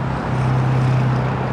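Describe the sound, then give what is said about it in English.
A steady, dense roar of city traffic with a low engine hum running through it, loud and continuous for the whole moment, with no voices. “While the sound of traffic may be expected in a city, Walker says it shouldn't be an issue that disrupts people's quality of life.”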